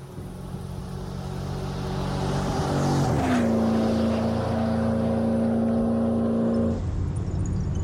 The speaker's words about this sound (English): A stolen car, busted headlight, a quiet back road.